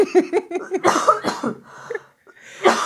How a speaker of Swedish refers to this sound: Så nu måste jag hosta.